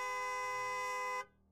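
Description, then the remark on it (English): A car horn blares in one long, steady, buzzy blast for just over a second in bumper-to-bumper traffic at an intersection, then cuts off abruptly, leaving a faint low rumble behind. “The thought of this quickly changed when he heard the car horns.”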